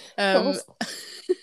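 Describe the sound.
A person mimics a coughing fit, with a voiced, strained burst followed by a harsher rasping cough and a short final hack, fairly loud.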